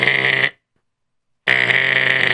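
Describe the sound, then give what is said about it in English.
A doorbell buzzes twice, a loud, harsh electric tone: one short burst, a second of silence, then a longer buzz that runs to the end. No voices. “Let me ring the bell.”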